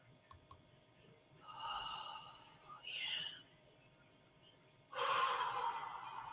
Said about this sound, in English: Yeah. You may feel a little lightheaded. You may feel a little lightheaded. The deep, deep breathing. The deep breath also connects us to the source, and the deep breathing.